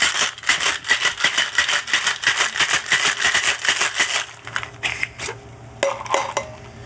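Ice rattles briskly inside a cocktail shaker as a gin martini, already chilled to 24 degrees, is given a gentle shake, in a steady, rapid rhythm for about four seconds, then stops, leaving a few scattered clinks and taps.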